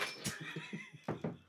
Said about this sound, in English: Put a couple ice cubes in there. There you go. Just a couple.